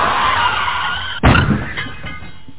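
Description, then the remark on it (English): A car crash: a sustained tire skid builds for about a second, then a single loud impact bursts into shattering glass and clattering debris that fades quickly. “couldn't start the car, and then when he finally did, it got into a car wreck.”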